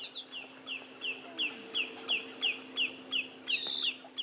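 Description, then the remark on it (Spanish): A willet calls repeatedly, a steady series of about a dozen sharp, clipped notes at an even rhythm, clear over a low, constant background hum. “Y playeros aliblanco.”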